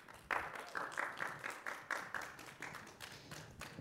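Steady applause from a small audience welcoming a meteorologist to the stage for an interview, with distinct hand claps landing in a fairly even rhythm at moderate volume, gradually thinning toward the end. No one speaks.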